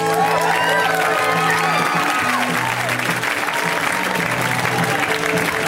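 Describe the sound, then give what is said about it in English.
A crowd applauds steadily with dense, continuous clapping, mixed with whoops and cheers rising over it, loud and sustained throughout, as comedian Dan Mintz is introduced to the stage. “A round of applause, everyone, for Dan Mintz.”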